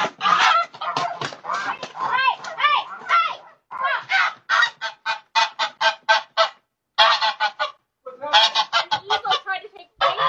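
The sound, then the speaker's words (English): A goose named Frankie honks loudly and insistently, a rapid, nearly continuous string of harsh honks broken only by a few brief pauses. “I was topless and an eagle tried to steal my goose.”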